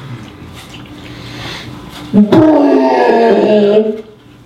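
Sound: voice imitating an elephant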